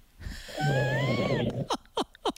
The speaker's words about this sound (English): What's going on? He's not even there. He's snoring. He actually fell asleep. Hang on. It is late, though. Hang on. We actually had a fall asleep on hold. This is unbelievable.